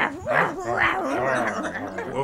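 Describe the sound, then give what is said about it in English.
A voice imitates small dogs yipping: a few quick, high-pitched yips, followed by a wavering, whiny vocal tail, all fairly loud and without other sounds. “Yip, yip. Yip.”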